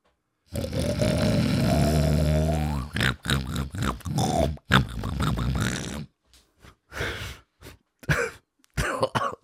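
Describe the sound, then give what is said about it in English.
A man's voice imitates a big pig with a long, deep rumbling grunt followed by a series of short, rough snorts and grunts, fairly loud, with brief gaps between bursts. “All right, big beefy pig. All right, this works with my voice being like it is right now. I don't know if I'll be able to snort.”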